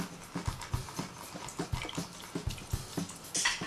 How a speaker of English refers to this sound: And it's half a cup of lime to a half a cup of water to a half a cup of sugar mixed all together. And now I have to squeeze the lime.